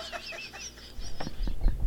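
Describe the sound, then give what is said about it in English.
A voice imitates a chicken at a small chicken farm squawking as a rope tangles around its leg: a quick run of high, wavering clucks, then several louder, abrupt squawks, without any words. “The next thing you know, you hear this, and this chicken, the rope got tangled around the chicken's leg.”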